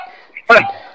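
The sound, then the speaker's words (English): A dog lets out one sharp, loud bark, a single abrupt burst against a quiet background hum with no other barks following. “My dog didn't like that.”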